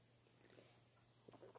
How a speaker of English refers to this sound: I'm gonna sip on my adult beverage.